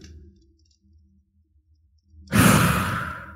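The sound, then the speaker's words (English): After near silence, a single loud, breathy raspberry blown with the lips, a mouth imitation of a fart, lasting about a second and trailing off slightly at the end. “So if I hadn't made a fart sound, I wouldn't have had to roll.”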